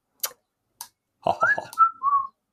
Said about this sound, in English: That was my best whistle.